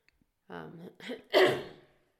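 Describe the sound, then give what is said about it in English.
A single loud, harsh cough bursts out, preceded by a couple of short throaty vocal sounds, then trails off into quiet. “Gosh, I gotta get a cough button.”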